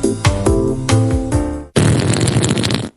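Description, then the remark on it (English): Buzzy, pitched fart noises from the voice game Fart That Tune step through a short, bouncy melody, then cut to a loud, sustained sputtering blast that runs for about a second before stopping abruptly. No one speaks. “Fart That Tune, a very farty That's music terrible. Game.”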